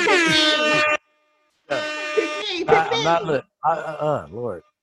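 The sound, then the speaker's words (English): Two loud, sustained, brassy air horn blasts separated by a short pause, followed by wavering, warbling voice-like sounds in quick bursts. “Wait, where's my fucking air horns, man?”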